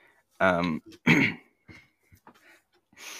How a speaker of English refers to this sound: Yeah, that's you coughing up some of the cake.